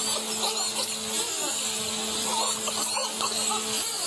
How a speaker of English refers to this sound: Now, it's important to remember that you're only hearing the human audible parts of dolphin sounds, and dolphins make ultrasonic sounds